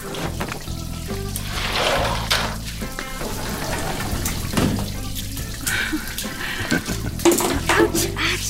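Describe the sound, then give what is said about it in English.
Steady shower water runs and splashes, a continuous hissing spray with small shifts in intensity and no pauses. “Can I join you in the shower?”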